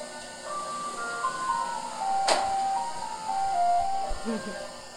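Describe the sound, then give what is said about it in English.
A slow, melancholy ice cream truck jingle plays its tinny melody over steady background hiss, with a brief sharp click or bang midway and faint low thumps near the end. “And that's an ice cream truck.”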